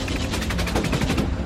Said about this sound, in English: According to one of the pilots, the anti-aircraft fire was so thick it looked as if he could have climbed out of his jet and walked on top of it.